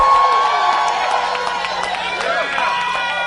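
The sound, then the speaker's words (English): A large crowd screams and cheers loudly all at once, a dense sustained roar of many overlapping high voices with no pauses. “Somebody scream right there. Just scream. Scream.”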